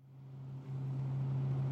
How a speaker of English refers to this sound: This is pretty convenient to have this bus that goes around the island. I agree. It's very convenient. Earlier this year, we were on a bus going around Roosevelt Island.